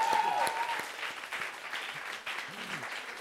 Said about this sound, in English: All right, let's give him a round of applause anyway.